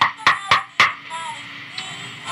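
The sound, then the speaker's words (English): Three sharp knocks on an office door on a cold November night, in a quick, even rhythm, followed by quiet background hum and a faint soft tap. “And there was a knock on the door.”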